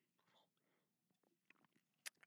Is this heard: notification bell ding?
no